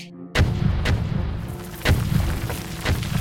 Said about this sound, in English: One by one, dynamite explodes inside too many mine shafts to count.